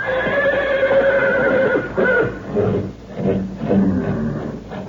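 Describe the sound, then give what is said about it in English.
Restless horses at a ranch at night neigh and whinny repeatedly in agitated bursts, several calls overlapping with shuffling, faint hoof movement underneath. The sound is continuous, with no talking. “When I heard the horses getting so restless, I took a flashlight and a rifle and went for a look-see.”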